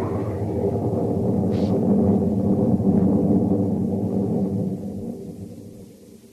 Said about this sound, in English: Through the thunder crash, I heard her. And then the lightning struck, and I was falling through the air.